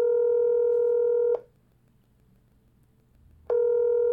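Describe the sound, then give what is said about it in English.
An outgoing phone call to a friend named Marcus rings with no answer: a steady electronic ringback tone sounds, pauses for about two seconds of near silence, then starts again. No one speaks. “He ain't gonna answer the phone, though. Not on the first ring.”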